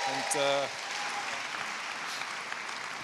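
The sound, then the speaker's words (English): Steady, dense clapping from an audience welcoming a guest speaker fills the whole stretch at an even level, with a brief voiced call or cheer rising over it in the first half second. “So I'd love you to give him a massive central round of applause.”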